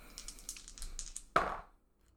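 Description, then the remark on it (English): Dice rattle in a quick run of light, bright clicks, then land with one sharper clack that rings briefly and fades to quiet. No one speaks. The dice are rolled to investigate a door in a game and come up 5, a failure. “Yeah, you can roll to investigate the door.”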